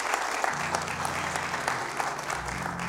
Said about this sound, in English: Would you guys give him a round of applause?